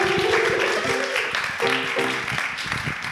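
A crowd applauds steadily for about three seconds, a dense hiss of many hands clapping, with some voices whooping and cheering over it.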